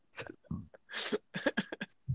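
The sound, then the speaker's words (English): An abrupt sneeze bursts out amid a cluster of short, breathy throat noises, a few quick rough exhalations following in a choppy rhythm, with no clear talking. “Bless you.”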